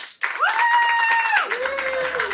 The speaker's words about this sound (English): So right now, clap if you think, yes, millennials will be left behind. And clap if you think, no, millennials will not be left behind. And then finally, clap if you are undecided.